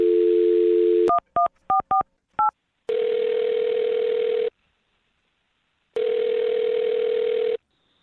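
A steady telephone dial tone gives way to a quick series of dual-tone keypad beeps as a phone number is dialed to make a call, then two long ringback tones with a pause between them, clear.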